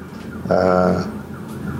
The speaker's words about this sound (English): Do you hear that? I do. It's the sirens. They're coming to take me away.